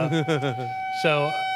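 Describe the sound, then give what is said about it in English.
A steady, sustained tornado siren tone drones continuously in Eagles, Indiana, while a person talks over it in short bursts. “Tornado sirens are going off.”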